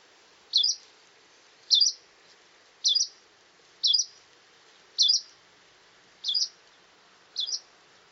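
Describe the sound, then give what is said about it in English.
A Hume's warbler gives seven short, clear call notes, evenly spaced about a second apart, each a brief upward-inflected chirp against a quiet background with no voices. “So first we're going to hear yellow-browed warbler and then Hume's warbler.”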